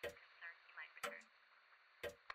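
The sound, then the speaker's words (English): A grand clock counting down ticks steadily, roughly once per second, each tick a sharp, clear knock over a faint, constant background hum. “Now, as the countdown on the grand clock winds down to its end, let us prepare to cross the Great Divide.”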